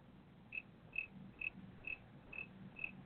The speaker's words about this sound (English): Well, what's that chirp, chirp, chirp, chirp I keep hearing? Good question. I don't hear it. I hear it. It sounds like a grasshopper chirping. Yeah. When you get quiet, that's when I hear it.